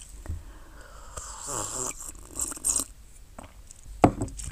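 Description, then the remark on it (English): Slurping sips of mate through a metal straw, a few gurgly, airy draws in a row, ending with a sharp little clink near the end. “But do I care? No, because I want to drink and sip mate.”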